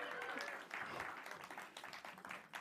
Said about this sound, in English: You have to keep clapping for the entire walk to their chairs. Walk faster or clap longer is the rule.